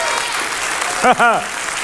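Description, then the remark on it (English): An audience claps steadily in praise to the Lord, a dense wash of many hands, while a voice briefly calls out twice over the applause midway through. “Give the Lord a clap, a shout of praise.”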